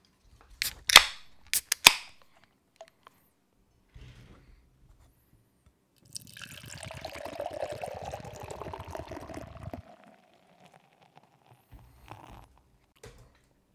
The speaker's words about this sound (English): The beer is poured out. It's looking like a fucking stout. Nice fucking head. Not on yours, but on mine.